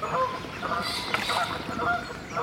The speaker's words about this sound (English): As we scare off some geese by accident.